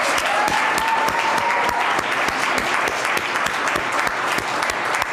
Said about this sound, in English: So I don't know that they've come upstairs yet, but we'll in absentia give a huge round of applause to all those who prepared our feast